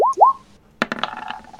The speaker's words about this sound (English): I love all the noise these dice are making.